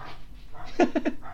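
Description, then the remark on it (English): A dog lets out a quick burst of three sharp, excited barks in rapid succession, moderately loud, with faint background murmur around them. “Is your dog's going absolutely mental?”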